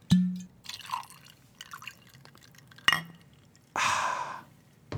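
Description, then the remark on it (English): Rum pours from a bottle into a glass, with a clink, gurgling splashes, a sharp tap of glass, then a final louder rush of pouring. “I like that you ahed it as you were pouring it, not after you were drinking it.”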